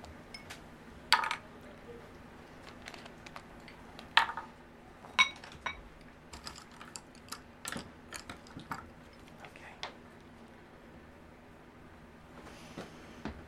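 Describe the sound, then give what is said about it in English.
Lids are taken off small glass ink bottles, giving a scattered series of sharp, bright clinks and light clicks at irregular intervals over a low steady hum, with softer fumbling toward the end. “And let me take the lids off my inks.”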